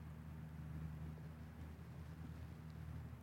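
A logging truck's low, steady engine rumble drones on from miles away, a faint continuous hum with a deep tonal throb and no voices.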